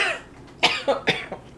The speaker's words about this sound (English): Your mom coughs? What's happened? That tahine didn't go down the right way, did it?